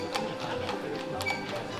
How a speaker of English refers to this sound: As everyone made their way through the doors, the horse and carriage with the most important attendee made its way down the road.